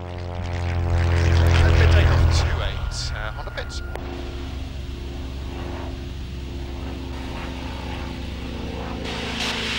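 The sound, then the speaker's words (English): A loud, steady engine of a Pitts Special aerobatic propeller plane with a 260 horsepower engine drones in flight, 1,200 feet above the North Kent coast, with a rich, buzzing tone, swelling slightly in the first seconds before settling into a constant roar with wind noise throughout. “This is the Pitt Special. It has a 260 horsepower engine and is capable of speeds of up to 210 miles an hour.”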